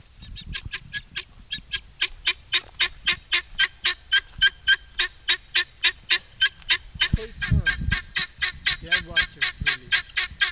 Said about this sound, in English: I noticed one of the birds making a lot of noise on top of a large covered bale of straw.